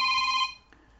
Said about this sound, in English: Clearly, I'm going to stop there for a minute because the phone's ringing.